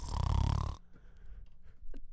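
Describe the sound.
A person imitates a loud, rumbling snore with their voice, one drawn-out rattling snort lasting under a second, followed by quiet room noise and faint rustling.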